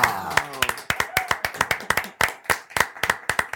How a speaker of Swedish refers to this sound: Det är dags att ta in vår gäst. Exakt. Ge en stor applåd, här kommer hon,